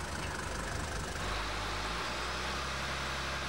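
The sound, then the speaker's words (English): A car engine idles steadily, a constant low rumble with a faint rattle that holds at the same level throughout, with no voices. “It's used to produce both heat and electric power, and it can be a substitute for petrol in specially modified motor cars.”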